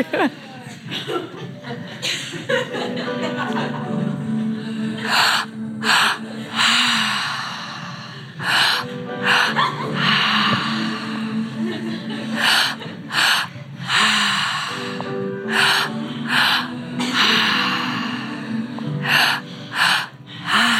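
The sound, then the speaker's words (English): A group of people doing active breathwork with eyes closed, breathing hard and rhythmically, with loud, overlapping inhales and exhales, gasps and sighs in a steady, vigorous pattern. “Just a handful of minutes of active breath more.”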